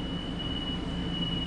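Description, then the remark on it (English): Steady rumbling noise of a moving, crowded Long Island Rail Road (LIRR) commuter train, a constant low roar with a thin, high-pitched whine running through it. No voices stand out. “It's a crowded train.”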